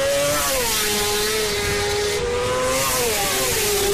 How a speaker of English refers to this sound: Now, it's most famous for being England's only road racing track, the public country lanes becoming a racing track for motorbikes several times a year. And over those weekends, this is what Oliver's Mount sounds like.